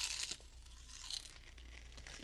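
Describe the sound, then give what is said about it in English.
Someone crunches potato chips: crisp, crackly bites and chewing that run steadily for a couple of seconds, fairly soft, with a few sharper crunches and no talking. “Is that a barbecue flavored chip you're eating there?”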